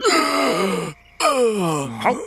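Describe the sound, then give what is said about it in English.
Two loud, drawn-out gasps, each sliding downward in pitch with a groaning, strained quality, separated by a brief silence, as someone jolts awake after a healing tonic is slowly poured into them. “And Finavir, you gasp awake.”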